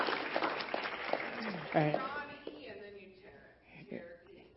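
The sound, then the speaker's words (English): A crowd bursts into applause, a dense patter of many hands, with whoops and raised voices mixed in, cheering for the woman who will lead the Bible studies and her spouse. The clapping thins out over a few seconds as voices carry on. “You're going to ask her and her spouse with her today and give them a good cheer.”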